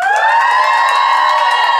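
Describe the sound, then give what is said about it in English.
A loud live audience screams and cheers to vote by applause, in a sustained, high-pitched roar, many voices blending together without a break for a couple of seconds. “I want you to scream as loud as you can whenever I say one of them, and we'll decide by applause what is the winner of this ship name duel.”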